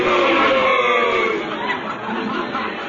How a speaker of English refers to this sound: why are they all saying a boo? They're trying to scare me? Luigi, that's human nature. When men gather in a crowd, they like to see blood, especially if it's not their own.